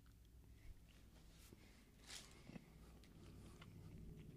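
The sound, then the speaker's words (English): A crunchy bite into a pumpkin spice moon pie, followed by soft, irregular chewing and mouth noises, fairly quiet, with no talking. “All right, we just took a bite, by the way, if you can hear us chewing.”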